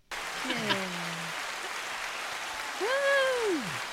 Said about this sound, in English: I think that deserves applause.